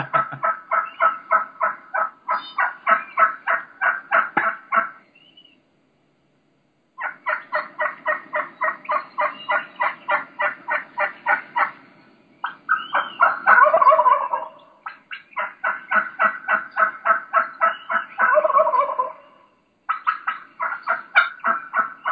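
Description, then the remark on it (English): Wild turkey hen cutting in rapid, sharp bursts of clucks, broken by short pauses, with a gobbler's rolling gobble bursting in twice; fairly loud, no talking. “You heard that just that's where you start getting that cutting. Cutting is very similar to clucks.”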